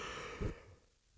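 A big yawn, a breathy, airy exhale with a brief low swell near the middle before it trails off into quiet. No talking.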